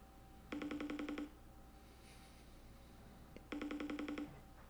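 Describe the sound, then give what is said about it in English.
A phone rings twice, each ring a rapid electronic trill lasting under a second, separated by a pause of about two seconds, with no one picking up and no voices. “Niggas not answering the phone, bro.”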